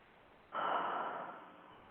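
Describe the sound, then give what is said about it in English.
A single breathy rush of air starts abruptly and slowly fades over about a second and a half, a person's deep, relieved exhale after breathing in while trying to relax. No one speaks. “So you just breathe in, and then relax and breathe out like relief.”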